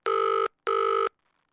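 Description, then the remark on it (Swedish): Two loud, steady electronic ring tones, each under half a second with a short gap between, from a phone ringing out on an outgoing call dialed to the wrong person by mistake, followed by near silence. No one speaks. “Oj, nu ringde jag fel. Nu råkar jag ringa Discovery-chefen.”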